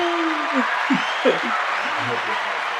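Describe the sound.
A steady wash of clapping lasts about three seconds at an even level, with a few short voiced whoops and murmurs mixed in underneath.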